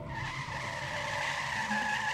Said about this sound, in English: So then he turns to see if he's got a green light when he starts hearing the screeching of tires.